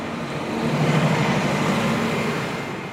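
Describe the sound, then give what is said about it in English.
A steady roar of street traffic of cars and trucks, heard by a delivery cyclist riding in the middle of them where there is no bike lane, with a low engine hum swelling and easing as vehicles pass; no voices, just continuous road noise. “Cesar is riding right in the middle of cars and trucks”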